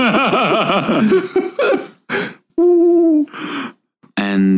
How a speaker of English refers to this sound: Dude, no, that's not just an owl. That's like a spirit in owl form. He's smart, man. He knows his stuff.